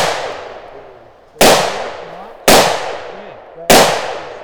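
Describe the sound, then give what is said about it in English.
Four sharp pistol shots fired during pistol shooting drills, at an unhurried, slightly uneven pace about a second apart, each a loud crack followed by a long ringing decay that trails off before the next. “After the pistol drills, they move on to rifle training.”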